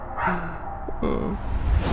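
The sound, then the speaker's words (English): A small dog yips and whimpers in short, high-pitched bursts, with some background noise and possible human voice mixed in. “My dog. Hey, Corona. Hey, Corona. I miss you so much.”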